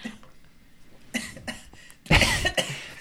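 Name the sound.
coughing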